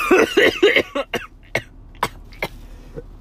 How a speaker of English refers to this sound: Oh, that's not good. I'm sorry for that. If people gag at the sound of other people gagging, it does not smell good.